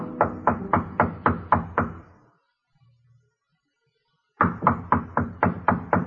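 A man in a pinstripe suit gives firm knocking on the wooden door of hotel room 617 in a dim-lit hotel corridor, two quick rounds of about seven raps each separated by a two-second pause, fairly loud with no voices.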